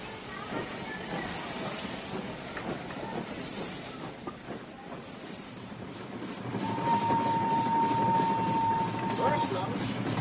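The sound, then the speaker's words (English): A crowded passenger train rolls along its rails with a steady, hissing rumble that swells louder in the second half, where a thin, sustained squeal rises above the noise for a couple of seconds. “Oh, the train is pretty crowded.”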